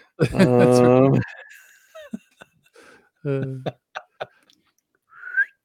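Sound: person attempting to whistle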